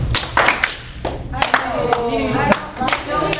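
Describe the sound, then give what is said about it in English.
Several sharp hand claps ring out in a room at uneven intervals, each a bright crack with a short tail, while a voice speaks faintly between them; the claps are made to hear the sound travel to the back of the room and bounce back. “Now clap.”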